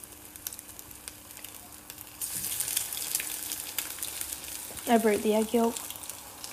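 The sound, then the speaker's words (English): An egg, its yolk broken, sizzles in a frying pan, a steady crackling hiss that starts a couple of seconds in and keeps going, with a short voiced hum from someone near the end. “I actually love the sound of, like, sizzling.”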